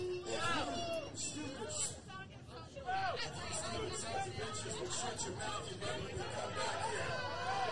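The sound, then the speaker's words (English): A large wrestling crowd boos loudly and continuously, a dense wall of jeering voices that swells and holds for the whole stretch, with a single voice, a proclamation from the king of Kingdom of Wrestling, faintly struggling to be heard underneath. “Proclamation from the king of Kingdom of Wrestling, although you can barely hear him with the crowd booing.”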